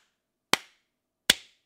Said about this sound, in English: A slow clap? Yep.